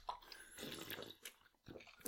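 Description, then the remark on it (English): Wet slurping sounds come in a few irregular bursts as someone sips a cold soda, with short pauses between pulls and no talking. “Alright, yeah, let's get some Slurpee Slurps.”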